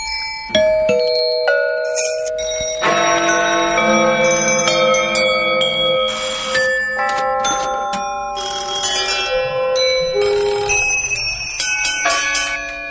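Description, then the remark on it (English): Many bells ring together in a dense, overlapping wash of clanging tones, struck repeatedly and irregularly for about thirteen seconds, loud, with long shimmering decays and no voices: an example of a public bell-ringing composition by Turner Prize-winning artist Martin Creed. “Why bell ringing? Because I thought that bells are the loudest instrument that there is, you know, so for making a public piece of music”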